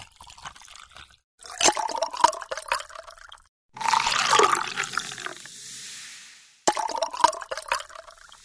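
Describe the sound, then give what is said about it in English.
A cocktail is strained and poured into glasses and topped with sparkling water, in three splashy bursts separated by short pauses, with one longer steady pour that fills and fizzes softly before stopping. No one speaks. “Do you want to pour it into the glasses and then I'll put the sparkling water on top?”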